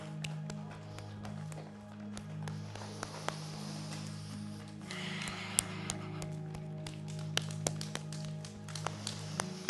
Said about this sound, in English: This is called the scalene muscles. We've been here already, so I'm tapping the side of my neck.